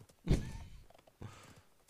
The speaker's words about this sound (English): Hop on your horse and just ride.